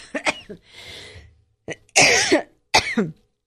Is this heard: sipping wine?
no